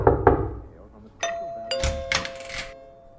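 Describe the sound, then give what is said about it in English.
A doorbell chimes two ringing tones in quick succession, the second note lingering and humming on. A voice is heard briefly just before, and noisy bursts of sound follow over the fading ring. “Oh, someone's at the door”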